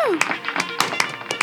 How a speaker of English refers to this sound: Ladies and gentlemen, would you please give a great big round of applause for